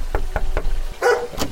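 German Dobermann Pinschers, large and black, barking: about four sharp, punchy barks at a steady rhythm, then a harsher, noisier bark and one more short one, fairly loud with no talking.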